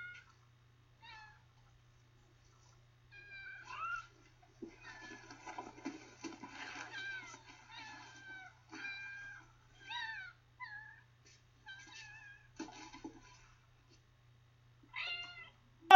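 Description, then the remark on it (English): A mother cat in a film meows and yowls repeatedly in short, wavering cries as it leaps out of an old kennel in Ludlow and knocks over a cardboard box holding four kittens, with scuffling and rustling noises in between. The calls come in uneven bursts, some sharp and loud, with no talking. “Yeah, not only is there a mother cat in there that leaps out, like, giving Jeff a real Ludlow welcome.”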